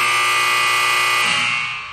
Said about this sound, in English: Jesus, maybe it's a Lotzel thing. All my guys from the Lotzel podcast are getting the buzzer.